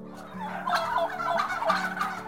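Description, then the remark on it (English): A wild turkey gobbles in rapid, warbling bursts, a rattling, throaty call repeated a few times in quick succession over a steady low hum, with no one speaking. “And turkeys can do more than just gobble.”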